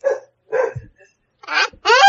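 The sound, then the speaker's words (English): A dog barks four times in quick, uneven bursts, loud, with short pauses between the first two and last two barks. “Oh no, get that dog away from me! Get him away!”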